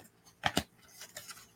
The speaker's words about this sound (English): Haven't worked with these in a minute, so I'm going to do a quick shuffle duffle of them.